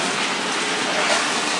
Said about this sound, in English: But I think I made a little too cold this time. But all right, we're warming the water up here, adding some hot water to the tub.